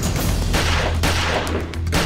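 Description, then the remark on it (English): Loud gunfire as Carla fires shots at Avis in a murder, the last from close range, several sharp blasts rising out of a dense, continuous rumbling roar over about two seconds. No voices are heard. “Carla fired 3 shots, the 4th shot from close range, close enough to spatter the tiny speck of blood found on her shoe.”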